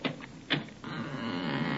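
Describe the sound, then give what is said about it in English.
The door of a basement flat being opened: a few sharp clicks and rattles of the latch, then a steady, hissing rush of sound once it swings open. No one speaks. “Well, wait, I'll open the door.”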